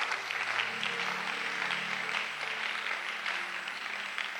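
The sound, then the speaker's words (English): A crowd claps steadily for several seconds, a dense, continuous patter of many hands with a low hum of voices underneath. “Are you clapping or you are?”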